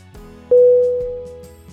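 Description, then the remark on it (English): A single short electronic beep: one steady, clear tone that starts abruptly and fades out over about half a second, with no talking. “Beep. B. E. E. P. Definition: to make a short, high-pitched sound, typically as a signal or warning.”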